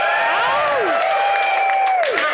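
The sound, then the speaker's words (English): A roomful of a couple hundred men at the annual Winter GoBundance event cheers and claps loudly, with whoops and shouted voices rising over steady, dense applause for a couple of seconds. “Can I get a shout out or cheer for that?”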